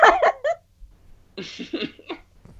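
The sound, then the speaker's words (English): A burst of loud coughing after laughing too hard comes in two clusters: a few sharp hacks first, then after a short pause a longer run of rough, raspy coughs trailing off. “I laughed too hard, I had to cough.”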